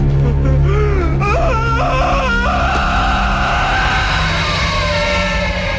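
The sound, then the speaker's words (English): A loud, anguished scream from Raphael, one of the turtles, on finding the sewer lair trashed and Splinter missing, wavers and climbs in pitch, then stretches into a long, strained wail over a steady low rumble. “And we get this one of a couple great Raphael screams where he just like goes up to the fucking sky and is...”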